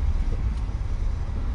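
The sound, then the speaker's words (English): A car engine running at a steady idle, a continuous low rumble with a faint airy hiss and no voices. “We're listening to the car, everybody.”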